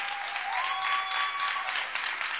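An audience claps together in a dense, steady wash of applause lasting the whole moment, with no voices over it and a faint thin ringing tone running through the middle.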